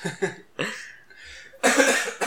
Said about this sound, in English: Fucking cough.